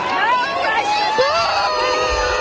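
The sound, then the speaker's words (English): A large concert crowd booing in a dense, sustained wash of overlapping voices, loud and continuous from start to finish with no pauses. “The crowd continued to boo, as you heard, and a lot of people walked out.”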